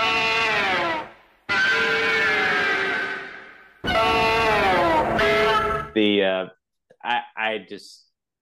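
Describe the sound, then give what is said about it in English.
The roar of the monster Angus, built from sped-up saxophone: three long, harmonically rich blasts with wavering pitch, followed by several short, high, squealing chirps that climb upward before cutting off. “Angus has one of my favorite roars, and it's one of my favorites. Just, you know, it's the little sped up saxophone. Playing it right here.”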